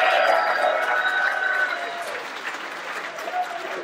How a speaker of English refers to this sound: Let's get a big round of applause for the entertainers, folks.